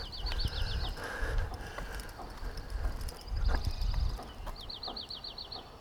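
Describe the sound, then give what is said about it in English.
Irregular hammer-like pounding at the forms for a curb and sidewalk being readied for pouring in front of apartments, a scattering of sharp knocks in misty air, with outdoor rumble and bursts of bird chirping in the background. “It's a little pounding noise in the forms for the curb and the sidewalk.”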